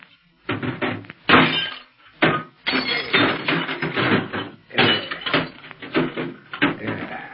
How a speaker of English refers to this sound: To make sure nobody else hears, I'm going to wreck this short wave set.